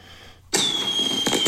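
A firework set off in a studio abruptly erupts into a loud hissing crackle with a high, steady whistle, then a second burst of crackling flares up near the end.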